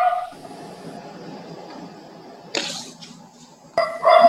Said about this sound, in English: All right, well, we get to hear my dog for a second. Everybody has an opinion, including the dogs. Maybe someone else who lives here will comfort him. Oh, there we go.